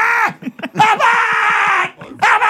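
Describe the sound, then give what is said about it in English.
A man lets out a loud, frightened scream imitating Lou Costello's scream on seeing Dracula creep out of a coffin, starting with short stuttering yelps that build into a long, sustained wail, then cut off before a final burst. “What's the matter with you? Stop screaming.”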